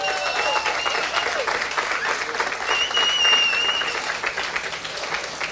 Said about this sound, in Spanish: ¿Qué tal si le dan otro aplauso al nombre del Señor?